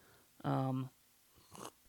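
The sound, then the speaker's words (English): A short, airy slurp of hot tea, coming just after a brief voiced hum. The sip is quick and moderately loud, a single hissy intake with no other sounds around it. “Did you hear that? Sip the tea.”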